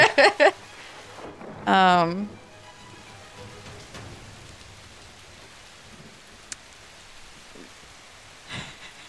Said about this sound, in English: It is raining.